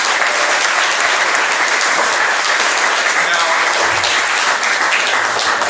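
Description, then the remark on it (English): A studio audience applauds steadily to welcome a guest on a show, a dense wash of many hands clapping at once, loud and sustained for several seconds with no pause or build. “Everybody give Guy a round of applause.”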